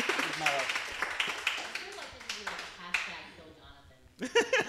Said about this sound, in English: Oh, I feel like I should join in clapping as well.